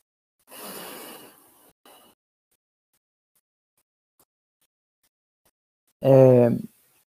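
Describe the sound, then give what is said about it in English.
Controlled combat breathing, counting to two on each phase: a long, airy inhale, a silent hold of about four seconds, then a short, forceful exhale with a voiced, sighing tone. “One, I'm counting to two, breathe in, counting to two, holding my breath, and breathing out on two. It sounds like this.”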